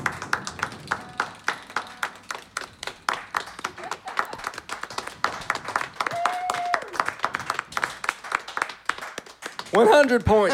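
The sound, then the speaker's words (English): An audience claps steadily for about ten seconds to encourage a contestant about to spin the wheel in a wheel-spinning game, sharp dense slaps with a brisk rhythm, a brief steady tone sounding midway, then excited voices cheer over the clapping at the end. “If you have never clapped before, this is the time to clap, people.”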